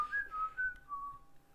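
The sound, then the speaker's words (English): A person whistles a short melodic tune, clear, with notes gliding between pitches over a couple of seconds, no talking. “You knew I could whistle.”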